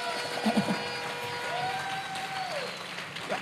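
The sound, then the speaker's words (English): An audience claps for Jesus steadily for several seconds, a dense wash of many hands with no clear individual beats, while a single held vocal note or cheer rises briefly above it midway. “if you believe like I do, clap for Jesus.”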